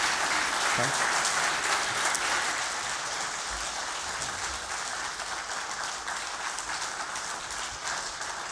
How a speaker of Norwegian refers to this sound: Skal vi gi han en applaus og si tusen takk? Takk skal du ha.